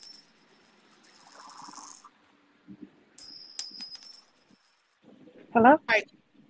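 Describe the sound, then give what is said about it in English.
Two bright metallic bursts of coins dropping and clinking, each ringing out with a shimmering decay, followed by a short spoken voice. “If you don't mind, drop a few coins in the...”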